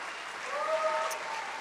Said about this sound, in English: Would you please put your best hand clap together